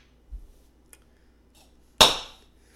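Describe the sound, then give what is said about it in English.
A single bright clink of glasses touching in a toast to the year 2020, with a sharp strike and a high ringing tone that fades over about half a second. Before it comes a soft low thud. “All right, and 2020. Let's cheers.”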